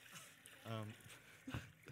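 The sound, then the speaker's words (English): Water with no ice in it pours steadily into a basin, a soft continuous splashing and trickling, with a voice speaking briefly over it and a few louder splashes near the end. “And he pours water into a basin.”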